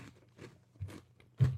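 Close-up crunching of someone chewing goldfish crackers, four crisp bites in a steady rhythm, the last one loudest, with no talking.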